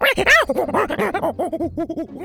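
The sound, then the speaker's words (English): A chubby monkey howls and screeches angrily as it retreats after being splashed with water, a rapid, rising-and-falling series of sharp, loud cries, with no voices around it. “She splashed water at him and the chubby monkey retreated, howling angrily at her.”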